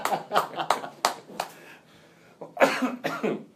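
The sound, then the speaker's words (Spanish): A handful of sharp hand claps, the speaker applauding himself, ring out in a loose, uneven rhythm, fading after a second or so before a person starts talking. “Aplauso para mí.”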